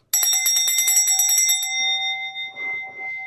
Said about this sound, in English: There's a bell for my collection.